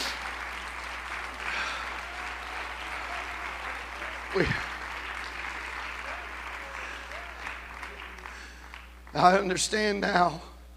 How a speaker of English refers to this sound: Oh, clap your hands unto the Lord today.